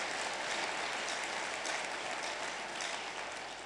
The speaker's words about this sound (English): Thank you for that bold one hand clap. Everybody clap unto the Lord.